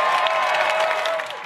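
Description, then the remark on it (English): A crowd at a political speech claps and cheers after a pledge to make deep cuts to the NYPD budget, in a dense, continuous burst of applause that holds at a steady, loud level throughout, with a faint sustained whistle-like tone beneath it. “And the crowd of liberal wackos goes nuts.”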